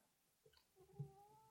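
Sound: cat meowing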